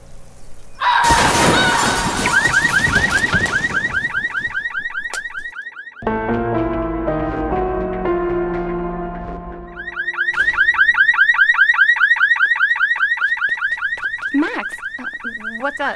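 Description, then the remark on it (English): Car window glass shatters loudly with a sharp crash, then a car alarm wails in a repeating warble, shifts to a steady pulsing tone, and returns to the rising whoop pattern, loud throughout, on a car lot where every car is trashed. “Don't move! There's glass all around you!”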